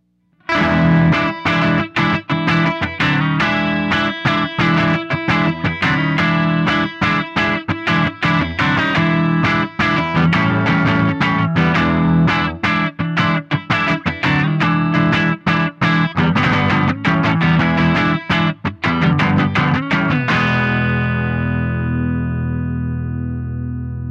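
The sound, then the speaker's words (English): Electric guitar through an amp on the Bright channel, volume at 9 o'clock, Bright switch pulled, bass max and treble at noon, played a little hotter for a warm, lightly crunchy breakup, as steady loud strummed chords for about twenty seconds before a final chord rings out and fades. “I got just a little bit of breakup, playing a little bit hotter, and got this nice, warm, kind of crunchy sound.”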